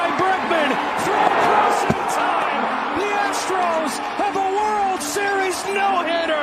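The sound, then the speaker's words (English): A ball bounces repeatedly in quick, uneven, sharp thuds over a steady bed of voices and crowd chatter. “Bouncing ball to third.”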